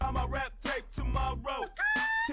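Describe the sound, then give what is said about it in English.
A voice imitates a chicken's clucking within a song, with loud, rhythmic squawking bursts repeating about twice a second, each a short pitched cackle sliding up and down. “Doing that little yeah, thing? The chicken.”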